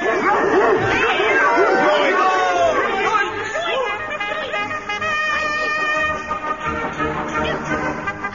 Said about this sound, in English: The kitten ran fast. The air was filled with the crying of the hounds. Jorrocks spurred them on with gentle words of encouragement.